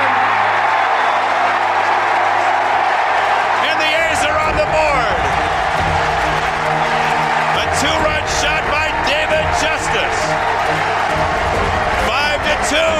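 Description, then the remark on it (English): A large stadium crowd roars and cheers after Justice hits a home run down the right field line in the bottom of the fifth inning of a baseball game, a loud, dense wash of voices that swells sharply a few seconds in and stays strong, with scattered clapping throughout. “And the crowd finally has a chance to let loose.”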